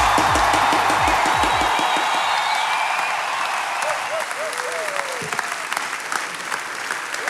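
A crowd applauds and cheers loudly and steadily, dense clapping filling the whole stretch, with a few whoops and shouts rising above it and low rumbling at the start.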